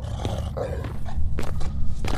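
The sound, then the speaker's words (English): Deep, rumbling growls and snarling roars from several large mutated dogs, captured from a super mutant encampment, layered together with sharp bursts of movement, fairly loud, with no one speaking. “There, what are they? Well, they may have been dogs once.”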